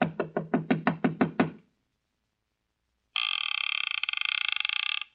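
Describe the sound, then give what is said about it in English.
A rapid run of about ten sharp, loud knocks on a wooden door in a quiet small town in Sonora, Mexico, then a pause before a shrill, steady bell rings continuously for about two seconds. “The town seemed deserted, but I finally took a chance and knocked on a door.”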